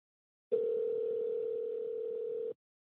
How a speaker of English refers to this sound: We're just going to pick up the phone and call. All right, let's do it.